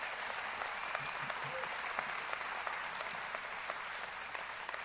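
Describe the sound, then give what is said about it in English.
A church audience gives the Lord Jesus a round of applause at a morning service, many hands clapping in a dense, continuous patter that holds at an even level from start to finish with no voices rising above it. “I want us to give the Lord Jesus another round of applause this morning.”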